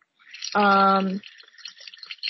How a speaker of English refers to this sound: Rinse it off with water and drop it in the sanitizer.